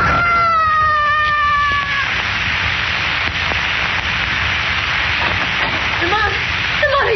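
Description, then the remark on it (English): A man's drawn-out scream as he loses his balance and falls 26 stories rings out over a steady hiss of rushing noise, then cuts off after a couple of seconds, leaving the static-like roar with faint scattered sounds. “I heard a scream.”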